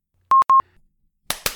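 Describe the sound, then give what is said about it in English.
Two short electronic beeps at one steady pitch, then after a pause two quick hand claps, each a sharp burst with a brief ringing tail. The claps sound somewhat weak and uneven. No one speaks. “Those are lame claps.”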